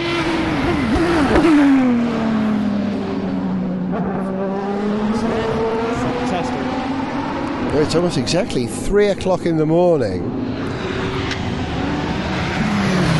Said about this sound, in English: Corvette. And another Corvette and the Pescarolo. And a 911.